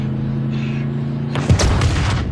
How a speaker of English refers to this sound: You know how they did that? No. 11 gallons of gas was all they used for that explosion.